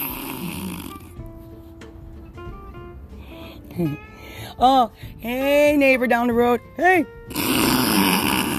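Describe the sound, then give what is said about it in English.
A loud stomach growl from hunger gurgles and rumbles in several uneven bursts, rising and falling in pitch, after a short spoken greeting. “I bet that was your stomach because I haven't heard you put the oven on and go like this.”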